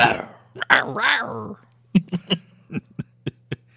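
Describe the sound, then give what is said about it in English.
A person imitates a growl up close: a raspy, rumbling vocal snarl for about a second and a half, followed by a rhythmic string of short, gruff bursts. “I'll growl in your face now.”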